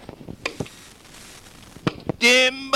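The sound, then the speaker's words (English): Several sharp, percussive thwacks of an axe chopping wood arrive at irregular intervals, followed by a loud, sustained high-pitched tonal sound at the end. “I listen to the Toxic Wise-Ass Show on the Renegade Talk Radio when I am not chopping wood.”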